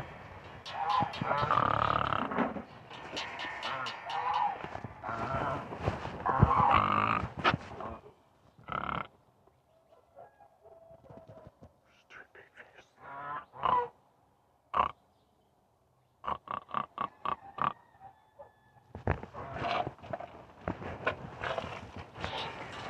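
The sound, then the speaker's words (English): Pigs grunt and snort, with a dense run of loud, rough grunting at first, then scattered short snorts and grunts separated by quiet gaps. “What are you doing in your pig face?”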